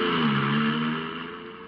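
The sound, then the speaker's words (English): A car engine revs steadily with a smooth, unbroken tone and no gear changes, then fades as the vehicle pulls away. “Oh, what an adorable car. Look, no shift.”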